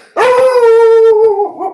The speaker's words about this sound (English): Oh, the dog doesn't like hearing that.